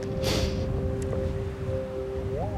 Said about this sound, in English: There's stars in the sky. I'm looking up at the crumbling castle. It's very windy.